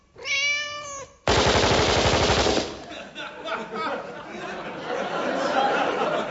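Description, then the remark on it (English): A single drawn-out cat meow rings out clearly, then is abruptly cut off by a loud burst of rapid machine-gun fire, followed by a murmur of indistinct voices. “And the cats? Well, here, puss. Here, puss.”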